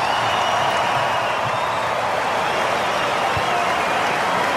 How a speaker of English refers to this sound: So a round of applause for the fans in the stadium and right around the world for the rugby league fans in 2020.